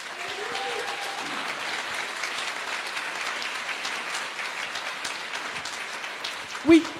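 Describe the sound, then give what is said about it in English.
An audience applauds with steady, dense clapping that holds at an even level throughout, ending with a brief louder thump near the end, congratulating two new senior ministers. “So will you please just celebrate with me and just congratulate them with a round of applause?”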